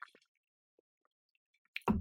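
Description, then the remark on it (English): Quiet sipping of water: a few soft wet mouth clicks and a faint slurp, followed by a louder brief clunk and rustle near the end, with no talking. “So let me have a little sip of water.”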